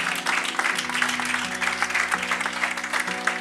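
A church audience claps steadily after a prayer, a dense rattle of many hands at a strong, even loudness, with a low sustained organ or keyboard tone underneath and scattered voices mixed in.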